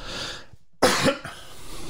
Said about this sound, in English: Got to fix that cough.